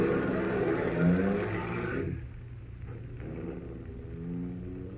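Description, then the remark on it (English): A car engine revs loudly for a couple of seconds, then drops off as the vehicle drives away, leaving a low, steady rumble fading out. “When Harris drove away, I walked over to my car and got in.”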